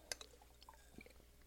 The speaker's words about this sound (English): I could edit out all these coffee drinking moments, but I don't think you're going to quit listening because I drank coffee and interrupted my flow of thought.